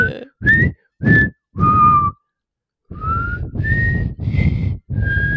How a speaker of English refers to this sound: It doesn't work well with these mics. It's so much like heavy breathing in there. Maybe if I'm further back, or like if I go like sideways, like. Was that better? Yeah, I think you just need to work on your whistling in general.